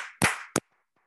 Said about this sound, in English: All right, so we'll leave it there. I am going to do a clap, clap, clap for the video so that it's easier to edit.